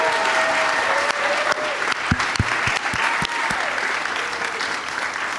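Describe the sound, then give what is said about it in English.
A live audience applauds guests Dan Schechter, Joe DeRosa and Sam Levine, a dense wash of clapping that stays loud and even throughout, with a few sharper individual claps and faint whoops standing out from the crowd noise. “One more time for all of my guests, Dan Schechter, Joe DeRosa, and Sam Levine.”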